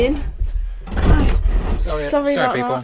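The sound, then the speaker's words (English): A chair is pushed back in a panic, scraping and thumping against a wall, one short dull knock amid the noise, while people keep talking over it. “The chair moved and.”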